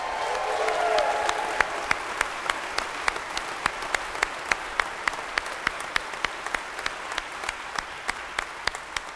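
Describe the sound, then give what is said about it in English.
An audience breaks into applause for a couple's 50th wedding anniversary, many hands clapping in a dense, steady wash that holds through the whole clip, with a few sharper individual claps standing out at a regular pace. “That is worthy of a clap.”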